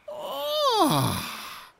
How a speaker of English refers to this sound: 10 little Jiffling eyes began to peep open, and they sat up, stretching and yawning